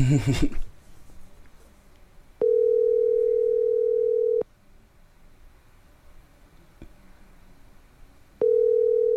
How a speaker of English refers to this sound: Oh, it's ringing.